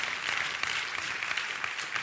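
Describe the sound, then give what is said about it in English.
An audience applauds steadily for a friend's return to work, a dense wash of many hands clapping at once, sustained throughout with no voices standing out. “We need to clap for this one.”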